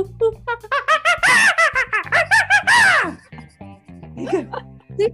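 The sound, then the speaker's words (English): A person imitates a monkey call, a rapid run of high, squeaky hooting cries that rise and fall in pitch, loud and excited, tailing off into a few softer yelps and giggles. “I love my monkey sound.”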